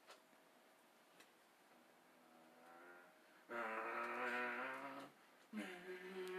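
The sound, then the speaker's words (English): A voice imitates car engine noises in place of laughing, a quiet rising whine that swells into a loud revving vroom, then cuts off and starts again briefly. No words are spoken. “What a substitute for laughing, fucking car noises.”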